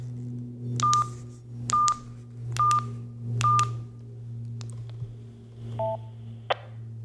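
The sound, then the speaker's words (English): Four short DTMF touch-tone beeps, evenly spaced about a second apart, key in the code star 841 on a radio to access Skywarn, over a steady low hum, followed by a brief two-note tone and a sharp click. “I'm going to enter star 841 on my radio now and let you hear Skywarn come back with that error message.”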